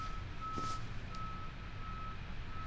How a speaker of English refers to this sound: And externally, you can hear there's a garbage truck. I don't have my sound, my timing set up quite yet, recording from my bedroom, which is currently the quietest room in my house, but we're picking up a little beep, beep, beep, beep, which is good.